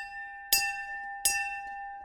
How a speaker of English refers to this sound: He says, out of the corner of my right eye, I saw men running for the bell. First two men ran, and then two more, then another. The instructors had carried the bell out with us to the beach. To quit, you rang the bell 3 times.